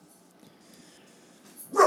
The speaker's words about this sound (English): Oh, no barking. Sorry, doggies are in here.